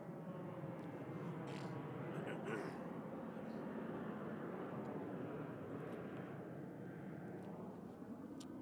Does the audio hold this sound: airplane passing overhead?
yes